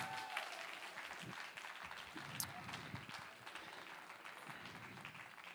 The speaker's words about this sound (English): And give them a round of applause.